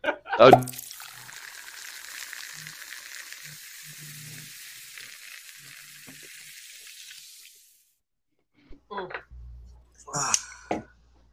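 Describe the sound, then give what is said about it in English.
Water runs steadily from a tap for several seconds, a loud, even hiss that starts after a brief knock and then cuts off, followed by short bursts of voices talking. “you take it easy on that water now.”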